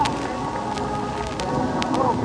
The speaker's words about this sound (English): Here he comes, stepping out on the wing, Congressman Peter F. Mack. Here comes, it's a wonderful report. Woo! Listen to the applause. Woo! Listen to the cheers.